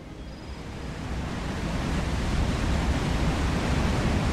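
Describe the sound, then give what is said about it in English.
A steady, dense roar of rushing water at the top of a waterfall fills the scene, fairly loud, swelling slightly at first and then holding constant, with no voices. “That's me standing at the top of a waterfall. At least you can hear that.”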